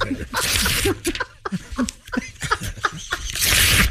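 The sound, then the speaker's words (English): Paper rips loudly in two rough, noisy bursts, one at the start and another at the end, with voices and light laughter in between. “Now, when you're tearing that paper up, are you also symbolically tearing up this whole idea?”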